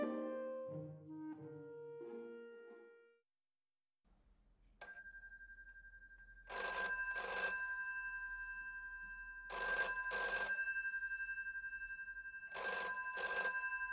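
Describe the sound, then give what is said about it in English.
A telephone rings loudly with an incoming call to a show, in the classic double-burst pattern, three paired rings repeating at steady intervals, preceded by a brief soft melodic tone and a short pause. “And now, on the phone, I have Carlos, my partner in Teletext crime.”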